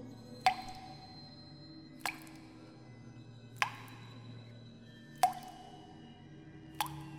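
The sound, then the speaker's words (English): Water drips from a tap in a first-floor supply closet, five clear plinking drops falling at a slow, steady pace over a low, constant hum coming from outside. No one speaks. “The room was dark and quiet, aside from an eerie hum that came from outside and the sound of water dripping.”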